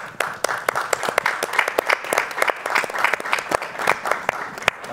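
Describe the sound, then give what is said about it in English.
An audience applauds the United States Institute for Peace, many hands clapping in a dense, continuous patter with sharp individual claps standing out, sustained throughout at a moderate level. “So thank you for that, and we applaud you.”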